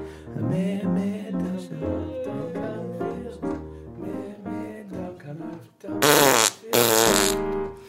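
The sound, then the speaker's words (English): A voice makes a long, buzzy, wavering imitation of a fart, sputtering on for several seconds before finishing with two loud, harsh blasts. It is fairly loud, with no talking. “And then like a fart.”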